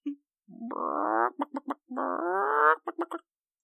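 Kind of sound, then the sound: vocal imitation, person imitating a chicken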